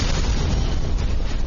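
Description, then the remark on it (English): A deep, roaring explosion blows a bridge hatch inward, loosing a brief storm of heat and a cloud of smoke. It rumbles steadily through the whole moment, loud and heavy in the low end with a hissy crackle on top and no voices. “Dauphine was pacing the walkway when the bridge hatch blew inward, loosing a brief storm of paralyzing heat.”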